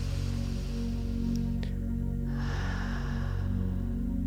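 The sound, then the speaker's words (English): A long, audible breath rises as a soft airy rush partway through, steady, during a guided deep-breathing exercise drawing the breath up toward the crown of the head, over a loud, low sustained droning tone that continues throughout. No one speaks. “Let's do three in and send it all the way up to your crown, that opening out the top of your head, and then breathing out, breathe another one in.”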